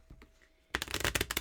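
Brisk riffle of a deck of tarot cards being shuffled, a quiet tap or two and then a loud burst of rapid flutters and snaps lasting under a second, with no voices.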